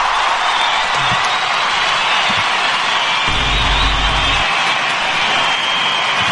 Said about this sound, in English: Oh, he's doing the arena chant in the crowd.